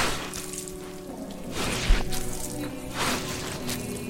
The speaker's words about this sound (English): shovels as he was born to.